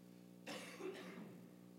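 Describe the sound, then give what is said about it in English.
A pair of quick, breathy coughs, the second following right on the first, with no talking and a faint steady hum underneath. “Pardon the coughing.”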